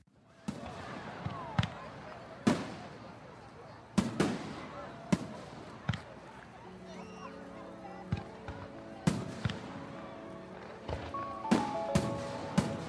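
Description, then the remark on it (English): Fireworks burst in an irregular series of sharp, booming cracks, some loud, others fainter, with murmuring voices and a faint tonal hum in the background. “Fireworks.”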